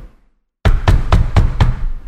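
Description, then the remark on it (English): A hand slams down on a desk five times in quick, steady succession, each impact loud and booming, with no voices present. “Yeah, I just slammed my desk a couple times.”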